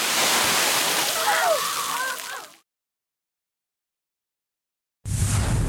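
Steady, loud hiss of water spraying at a spray park with faint children's voices mixed in; it cuts off abruptly, leaving a few seconds of silence, then a short burst of rushing spray returns.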